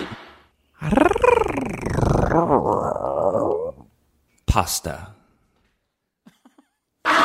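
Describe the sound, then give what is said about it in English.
A voice imitates a whale shark with one long, wavering, growly moan lasting about three seconds, rising and falling in pitch, followed by a short sharp burst and a brief spoken word. “those were sort of our best guesses at what a whale shark might, what they might sound like sort of in the wild.”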